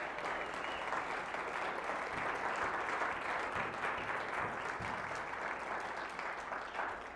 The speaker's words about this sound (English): Let's clap for her as well. I think that'd be good.